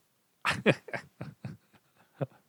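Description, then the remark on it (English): A female dog lets out a quick run of sharp barks, five in close succession, then a couple of fainter yips and one last bark after a short pause. “Of course, it was right as I unmuted to start talking to you again that she decided to bark.”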